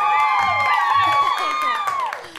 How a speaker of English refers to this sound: No, but I did. I heard it. I gave you a big applause.